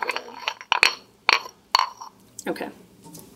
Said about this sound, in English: I'm going to put the pestle in there to get every little dab out. All right, so beat that up.